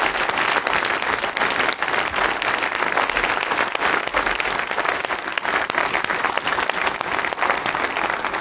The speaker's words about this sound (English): So would you join me in just applauding God for His work through our church family?